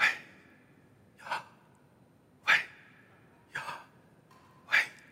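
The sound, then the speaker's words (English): Five short, airy breaths, in and out, repeat at a steady pace about a second apart, performed to demonstrate the divine name Yahweh as the function of breathing. Each is a breathy rush of air with quiet pauses between and no talking. “I'm going to embarrass myself by trying to perform this, but the name Yahweh is actually, the way that he reads it, the function of breathing itself.”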